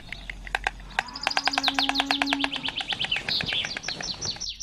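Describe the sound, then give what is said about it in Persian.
A lively chorus of birds, such as mynas, finches and sparrows, chirping and tweeting in the plane trees of Valiasr Street in Tehran, Iran, with rapid overlapping calls and a steady low hum of traffic or city noise underneath. “هنوز چنارهای خیابون ولیعصر که آخرین یادگار چنارستون تهرانن، هم خیابون رو خنک میکنن، هم مأمن پرنده های تهرونن.”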